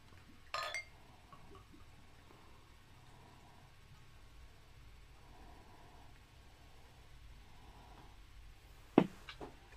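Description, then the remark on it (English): Beer being poured into glasses: a soft, faint pouring murmur over a low steady hum, framed by a short glassy clink near the start and a sharper, louder clink of glass at the end. “Pretty good pour”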